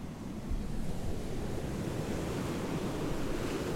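Steady surf rolls and breaks along a shoreline, a continuous low roar of waves with gusty wind buffeting the microphone, no voices present.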